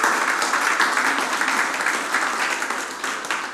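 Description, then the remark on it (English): A church audience applauds itself for its donations, many hands clapping in a dense, even wash of sound that holds at a fairly loud level throughout, with no voices rising above it. “Can you give yourselves one more round of applause?”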